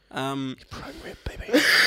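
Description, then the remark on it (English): A person coughs: a short voiced grunt, then a few rough, throaty bursts ending in a loud, harsh, breathy hack. “is that cough a hack?”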